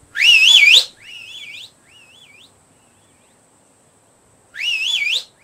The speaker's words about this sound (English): So I was doing my whistle, hoping to hear something in return, and, you know, a bark, a shout, a cry, something.